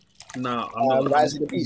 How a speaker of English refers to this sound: We are pouring the water, yeah, and it sounded like a bourbon advert.